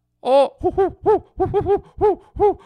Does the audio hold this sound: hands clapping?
no